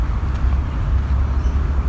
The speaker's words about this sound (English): The other side of the water are highways, train lines, so it's a little noisy here.